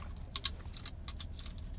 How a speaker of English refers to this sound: And, I'm munching on these chips right now, so bear with me.